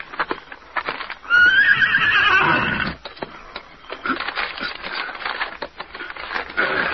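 A horse named Scout lets out a loud, shaky whinny, then hooves clip-clop in a steady rhythm as it trots off, sent to find the Lone Ranger. No voices are heard.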